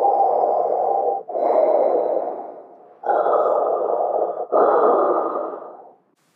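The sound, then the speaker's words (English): A person imitates the heavy, mechanical breathing of a figure in a dark cape and a black helmet covering the face: four long, rasping breaths alternating in and out, loud, with a hollow, hissing resonance and no other sounds. “one of the characters portrayed by the artist is wearing a dark cape and wearing a black helmet that covers their face and swoops down towards their shoulders, and this person is breathing heavily like this.”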